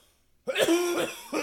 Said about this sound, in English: That'll be like the perfect opportunity for the coughing bit. Oh man, if I can figure out if I can get that to work. Like we were just like, as you just heard, like me just coughing up my lung.